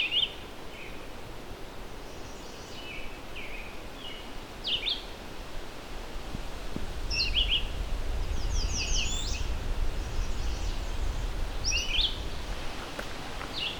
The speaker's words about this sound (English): We've got a red-eyed vireo here. They're also not very picky about territory, other than they want some fairly sizable trees around.